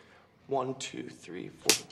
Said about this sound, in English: Slapping him.